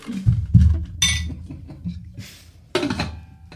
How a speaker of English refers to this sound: So, anyways, that's just some ice going into a bourbon glass.